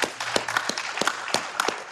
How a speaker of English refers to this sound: That was a great question. Let's clap it up.